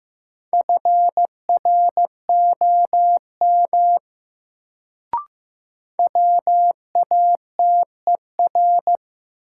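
Morse code sent at about 15 words per minute as a drill of sentences from the top 100 words: a steady mid-pitched tone keyed in crisp dots and dashes, grouped into letters, broken by a brief click and pause midway before resuming.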